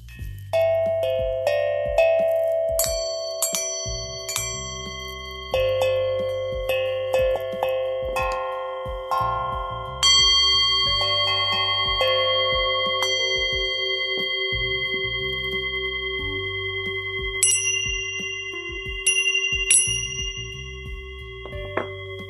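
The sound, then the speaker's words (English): Resonant Tibetan singing bowl tones ring and sustain while bright Tibetan dragon tingsha bells chime sharply a few times, over soft, steady low chakra drum beats, with no voices. “My chakra drum, my Tibetan singing bowl, and my Tibetan dragon tincha bells.”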